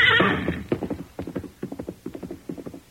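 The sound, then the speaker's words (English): A horse gives a loud, shrill whinny, followed by a steady rhythm of hooves clip-clopping along as Silver, the masked man's horse, approaches a saddled horse that had been grazing, with no voices. “Now, at the sound of Silver's approach, he raised his head.”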